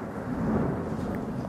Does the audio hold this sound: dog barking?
no